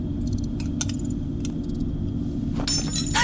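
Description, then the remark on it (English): Light glassy clinks ring out over a steady low rumble, then near the end a sharp burst of glass breaks and shatters, loud, with a final crash trailing after. “Oh, don't break them! I didn't bring enough for them to get shattered.”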